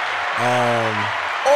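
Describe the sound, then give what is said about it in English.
A round of applause: dense, steady clapping fills the whole moment, while a single voice holds a sustained drawn-out tone over it partway through. “I think that deserves a round of applause, everybody.”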